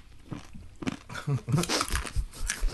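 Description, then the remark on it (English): Loud crunching of corn nuts being chewed, with sharp irregular cracks and grinding bites packed densely together over a few seconds. “Yeah, and once you chew into the corn nut, it's unmistakably corn nut, so I can't taste anything else.”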